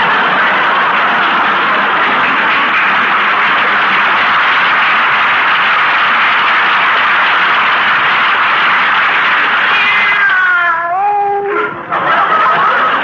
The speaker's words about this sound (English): Come over here. That's a good kitty.